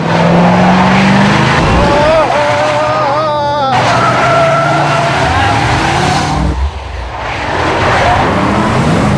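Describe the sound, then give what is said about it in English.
A powerful car engine roars as a person drives it, revving hard with its pitch climbing in repeated surges over a steady loud rush of road and wind noise. “Oh, it's got some power, so just get a feel for it.”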